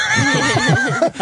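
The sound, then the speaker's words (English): A horse whinnies loudly and close by, one continuous wavering neigh lasting about a second that trembles in pitch before breaking off abruptly. “6 months later, a horse shows up in Kansas City.”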